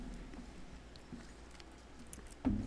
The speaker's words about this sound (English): And again, I think this is the second time we've ever eaten on a podcast. I'm glad that you guys get to listen to us chew.